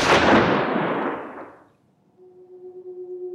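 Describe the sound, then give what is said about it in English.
A single loud gunshot blasts out and its echoing roar fades over about a second and a half, followed by a quiet, steady high ringing tone. “Suddenly you hear a gunshot go off, and then after it's all dispersed you go in and you see something”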